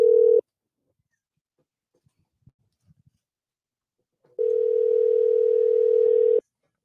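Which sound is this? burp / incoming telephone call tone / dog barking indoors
incoming telephone call tone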